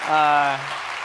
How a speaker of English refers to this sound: If you want to give a round of applause, you can.